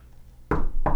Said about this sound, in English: I'm knocking on wood there.